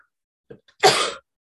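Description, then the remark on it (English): A single loud sneeze: a short catch of breath, then one sharp, breathy burst lasting about a third of a second, with quiet before and after and no talking. “All of a sudden, I got a sneeze.”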